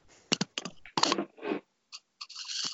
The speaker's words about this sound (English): No, there's just a really loud rustling noise.